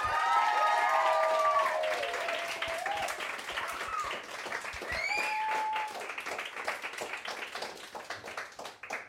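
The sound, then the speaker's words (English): An audience claps steadily for about nine seconds as a poet is welcomed to the stage, a dense wash of hand claps with scattered whoops and cheers rising above it, gradually thinning toward the end. “Could you take that applause and double it as we welcome to the stage the one and only fantastic”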